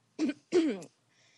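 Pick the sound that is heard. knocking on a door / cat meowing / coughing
coughing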